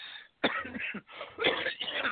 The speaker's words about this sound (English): And your cough seems to be catchy. Yeah. Sorry.